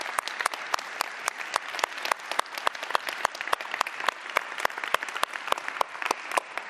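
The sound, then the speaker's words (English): An audience claps steadily for life group leaders who have stood up, a dense crackle of many hands with sharp individual claps poking through at an even, brisk pace, holding a fairly constant moderate level throughout, with no one speaking. “Can we just give them a round of applause, please?”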